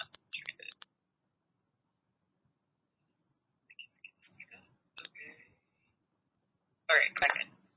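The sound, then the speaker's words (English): Short bursts of clicking and tapping from a phone being handled, mixed with a few brief electronic notification chirps, in three clusters separated by silence, fairly quiet. “I still have not figured out how to work notifications on my phone.”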